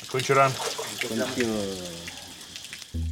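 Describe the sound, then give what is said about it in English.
Water pours steadily over a rock, used by a man as a shower, a continuous splash, while his voice makes drawn-out wordless sounds over it. “At a bare minimum, it's the first shower I've had in 3 days.”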